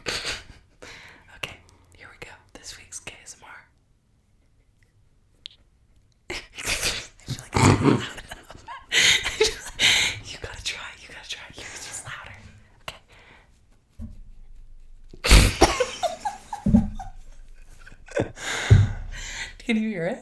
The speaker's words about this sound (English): Thank God I'm not coughing yet. KSMR cough.